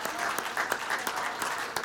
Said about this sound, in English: Isn't the Lord good? Aren't you glad you come to church today? Let's clap our hands unto the King. Thank him.